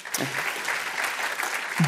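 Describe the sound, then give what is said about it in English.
An audience breaks into applause, a dense wash of many hands clapping at once, steady and fairly loud throughout, with a brief voice poking through near the end. “I've never knowingly turned down a clap, but let's do it at the end.”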